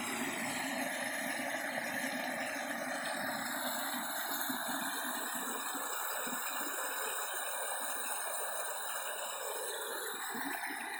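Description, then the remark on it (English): A waterfall and flowing mountain stream make a steady, continuous rushing roar with a hissy edge. It stays at an even loudness throughout, with no voices. “So, we hear the waterfall off to my left as I look up the gentle canyon on the mountainside.”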